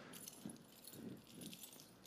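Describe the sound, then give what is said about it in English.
Metal keys on a keychain jangle and clink together as one is grabbed blindly, with eyes closed, from the bunch. The keychain holds a key that opens a locked box. It is a continuous rattling with brighter bursts of jingling, with no voices present. “So close your eyes, don't cheat. Grab one of these keys.”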